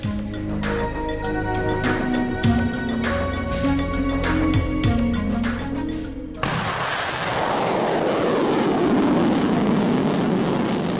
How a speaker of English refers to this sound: Gotta love that sound if you're a regular in these parts. It was a Black Brant 9 rocket taking off from Wallops Island, Virginia, last August 17. Tucked tightly into the nose of that rocket was the Inflatable Reentry Vehicle Experiment, or IRVE.